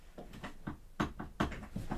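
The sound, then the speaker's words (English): An office chair's height being adjusted: a quick run of about eight creaky mechanical clunks, two of them noticeably louder, in a loose, uneven rhythm with no talking. “My chair doesn't go any lower. It does.”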